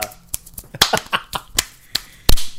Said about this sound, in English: Let me add some fighting sound effects.